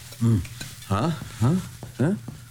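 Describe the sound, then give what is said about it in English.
Food sizzles in a pan with a steady hiss as a father cooks a large breakfast spread for his family, while four short, pitched, voice-like squeals rise and fall over it at roughly even intervals. “Dad's cooking breakfast.”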